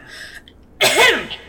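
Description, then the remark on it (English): A single loud, explosive cough bursts out harshly, then trails off into a falling, raspy voiced tail, with no talking around it. “I cough really loud.”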